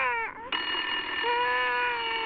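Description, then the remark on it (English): A loud, steady electronic telephone ring with a bright, buzzy tone, briefly broken at the start before sounding continuously for about two seconds, with no talking. “I'm gonna go grab the phone.”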